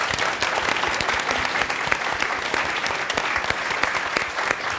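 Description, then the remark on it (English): Sustained applause from an audience at an event at the Japanese American National Museum, thanking the program's co-presenter UCLA, fills the space, a dense steady wash of many hands clapping at once, fairly loud and even throughout with no voices standing out. “So a big round of applause for them, please.”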